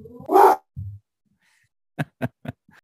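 A dog barks: one loud, drawn-out bark and a low grunt, then after a pause a quick run of three short, sharp barks and a faint fourth, with no talking.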